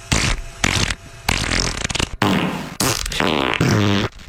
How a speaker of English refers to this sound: Okay, so out of the fart noises that I have here, I'll turn it up so people can hear. Which fart makes the best horn?